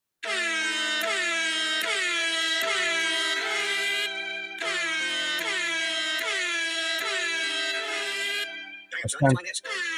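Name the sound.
air horn sound effect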